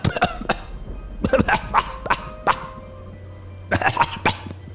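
human body sound, man coughing

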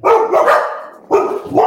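animal, dog barking

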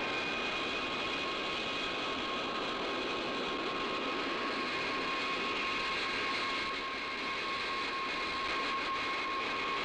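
vehicle, airplane jet engine

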